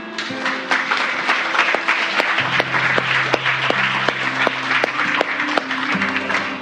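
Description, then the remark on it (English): A church audience bursts into sustained applause for the Lord after a prayer, many hands clapping densely and steadily for several seconds, with a low sustained organ or keyboard tone humming underneath. “If you just pray that prayer, give the Lord a round of applause.”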